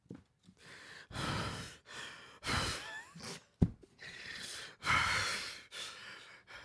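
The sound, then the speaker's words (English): A voice imitates their own heavy breathing while parallel parking: a series of loud, breathy inhales and exhales in an uneven rhythm, with a sharp snort-like catch partway through and no words spoken. “And as I was parallel parking, I heard myself breathing.”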